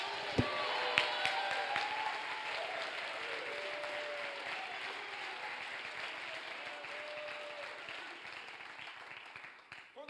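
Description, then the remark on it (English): An audience, told to jump to their feet, clap their hands and shout hallelujah, claps steadily in a dense, sustained burst of applause, with scattered voices shouting and calling out over the clapping throughout. “If you believe it, jump to your feet, clap your hands, and shout hallelujah.”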